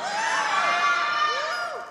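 An audience shouts and cheers together in a dense, sustained roar, with many overlapping high voices and rising and falling whoops sweeping across it, loud throughout before easing slightly at the end.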